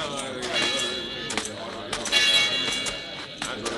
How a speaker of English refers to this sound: All right, Rafe, you can stop ringing that bell. Now that everyone in town is gathered here, you can judge for yourselves whether I'm right or not.